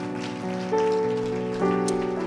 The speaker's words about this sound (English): Come on, we need to do a better job clapping than that, because the Bible says the angels are rejoicing in heaven tonight because of these decisions.